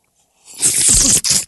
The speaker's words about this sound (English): Coffee break. Tastes so good. We all took a sip. Yeah, we did. Woo! Just got so thirsty there for my sweet coffee.